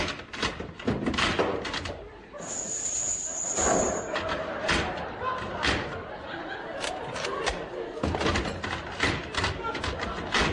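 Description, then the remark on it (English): A stuck door is kicked and thumped repeatedly, loud heavy bangs and thuds in an uneven rhythm, with murmuring voices and a bit of laughter in the background. “Oh, blimey, open the door”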